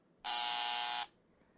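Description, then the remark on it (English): A single loud, harsh electronic buzzer blares steadily for just under a second, a dense rasping tone with many harmonics, then cuts off abruptly into near silence. No one speaks. “All right, make another buzz noise.”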